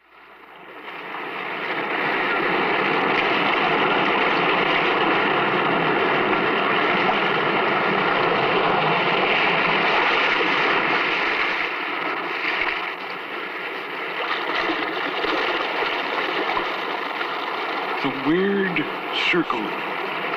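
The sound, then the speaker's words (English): A steady, roaring wash of restless sea surf in a cave, continuous and fairly loud with a hollow, enclosed quality, swelling slightly and easing near the end, with a brief tonal cry near the close. “In this cave by the restless sea, we are met to call from out of the past stories strange and weird.”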